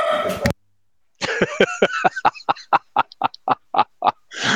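A dog barks in a quick, steady run of about a dozen short, sharp yaps, fairly loud, after a brief burst of noise and a moment of silence.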